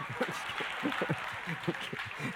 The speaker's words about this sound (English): So clap for me now.